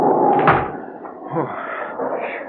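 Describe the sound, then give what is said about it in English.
A wooden door swings open with a brief creak and then bumps shut over a steady rushing wind. “The door, Denton. We don't have to knock. We walk right in.”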